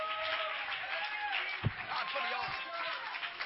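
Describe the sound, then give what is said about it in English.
A church audience claps their hands to thank God for the altar during a sermon, a dense, steady wash of applause lasting a few seconds, with voices calling out and mingling through the clapping. “Somebody clap your hands and thank God for the altar right now.”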